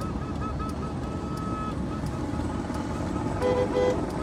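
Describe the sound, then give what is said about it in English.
Car horns honk over steady road rumble from a convoy of cars flying flags, near a 'Welcome to Alberta' sign: a thin sustained tone early on and then a couple of louder blasts near the end, like vehicles tooting in a passing line. “Love the honking. Honk, honk, honk.”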